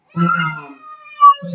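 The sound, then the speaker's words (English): A young child yells at a teddy bear in high, wavering wordless cries: a long strained shout, a brief pause, then a sharper squeal and the start of another cry. “My daughter agrees. She's yelling at the teddy bear.”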